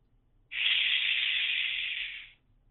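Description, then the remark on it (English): A single steady "shhh" from someone shushing: a smooth, bright hiss that starts abruptly, holds evenly for about two seconds, then fades out, with no talking around it. “I thought you were going to say a word, and then you shhed, which was very appropriate.”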